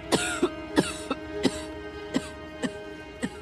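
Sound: woman coughing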